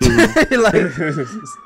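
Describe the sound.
A police siren wails steadily outside in Brooklyn, a drawn-out tone that sinks slightly in pitch, while a man talks over it near the start.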